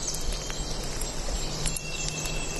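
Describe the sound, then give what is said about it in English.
Steady, soft hiss of drizzling rain with faint, thin bird calls chirping over it and a low, constant hum underneath coming from a visitor center half a mile away; no one speaks. “Underneath the singing birds and drizzle of rain, we can still hear a hum coming from the visitor center half a mile away.”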